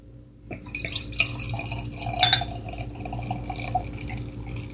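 Private's Pleasure, a Henderson beer from Toronto, pours into a glass in a steady gurgling stream with fizzy, bubbly splashes that builds slightly as the glass fills. No one speaks.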